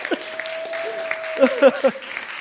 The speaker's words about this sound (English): Round of applause